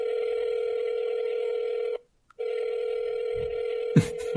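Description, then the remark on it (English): A telephone call to a roommate ringing out unanswered: two long, steady, buzzing ringback tones separated by a short pause, with brief low voices stirring near the end of the second tone. “It's three rings.”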